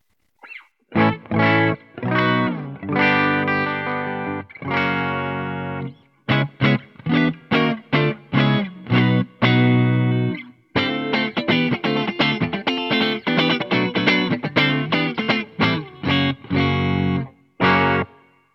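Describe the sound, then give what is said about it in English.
A lightweight custom shop Telecaster electric guitar with Abigail Ibarra pickups plays in a clean, unprocessed tone, moving through bright chords and quick runs of single notes with short pauses, fairly loud, with no voices. “We'll try a Tele next, because that's another thing that … likes to play.”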